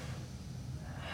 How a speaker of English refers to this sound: There you go. Breathing out.